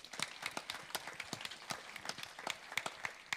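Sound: applause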